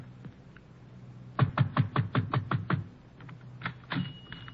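A fist pounds on the door of a small, dark tobacco shop with drawn shades on a narrow, crooked street near the waterfront in Trieste: a quick, even burst of about eight heavy thuds, followed after a pause by two more isolated knocks.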